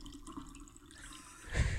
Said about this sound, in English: You hear running water. It's a very strange river.